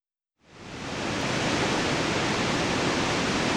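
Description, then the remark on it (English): A waterfall rushes beneath a narrow bridge in the Val di Fiemme, in a steady, dense roar that swells up after a brief moment of silence and then holds constant and full, with no voices. “Our tour ended with a conversation on a narrow bridge that spanned a waterfall.”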